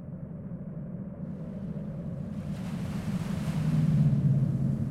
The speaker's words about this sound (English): White foamy waves lap onto the gray and sandy shores of West Beach in Nome, Alaska. Dredges mark the horizon, separating the dark waters from the light blue skies.